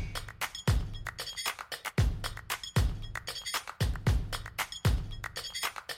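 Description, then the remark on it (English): Metal spoons clink and rattle against each other in quick, bright, ringing taps, with a heavier low knock every second or so as they shift. “I've got another set of spoons for you here. So I'm just going to move that one out of the way.”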